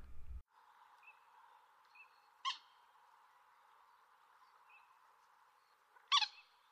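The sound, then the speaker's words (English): Two loud, abrupt moorhen calls ring out several seconds apart, with a few fainter clucks in between, all over a steady hiss of outdoor background noise. “The moorhen is an extremely vocal bird, capable of producing a number of bizarre, distinctive sounds, including a variety of clucks and chattering calls.”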